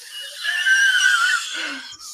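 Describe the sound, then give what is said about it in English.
A voice imitates being out of breath after climbing stairs: a long, strained, wheezy gasp, followed by a shorter, lower breathy rasp. “so that I can hyperventilate when I get to the top of the stairs”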